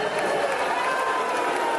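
A large crowd in Texas boos a speaker off the stage, loudly and continuously, a dense wall of jeering voices filling the room with no break and no individual words standing out.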